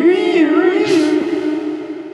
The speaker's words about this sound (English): So, okay, so the protest siren. Yeah.